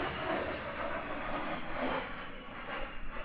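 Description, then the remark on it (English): An A-10 Warthog military jet, one of several, roars overhead with a steady, loud, rushing engine noise that holds at an even level throughout, with no voices present. “Oh, an A-10 Warthog. Here's another one.”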